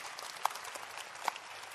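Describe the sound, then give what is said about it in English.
A crowd at a sermon applauds steadily for God at the preacher's call, a dense wash of many hands clapping at once, with a couple of sharper, brighter claps standing out above the rest. “Clap for this good God that we have.”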